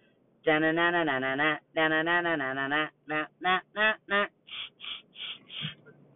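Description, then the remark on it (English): The chicken dance tune played in a nasal, duck-like quacking tone: two bursts of rapid repeated notes, then a run of short, separate staccato notes, loud with nothing else. “Oh, I'm going to give you a little tune.”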